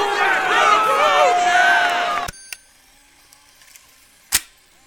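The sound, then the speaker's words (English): A loud, dense burst of crowd noise with cheering voices and clapping cuts off abruptly after about two seconds, leaving near silence broken by a couple of isolated sharp claps. “With this thunderous applause, the once productive policy, known affectionately as Clear Skies Tim, has violated the sanctity of HeartLife's most sacred tradition”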